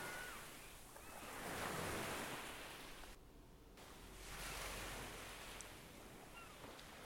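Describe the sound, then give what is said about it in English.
Steady ocean surf washes ashore in broad, rolling swells, the rush of water rising and falling in slow waves with no voices present. “Let that wandering mind serve as a gentle reminder to come back to your anchor. The sound of the waves.”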